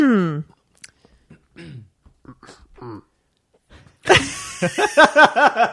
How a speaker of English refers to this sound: I'm sorry. That's how you clear your throat.